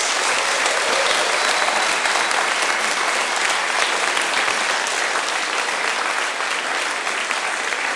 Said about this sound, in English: So thank you so much to the guests today. A massive round of applause for all of the panelists, please.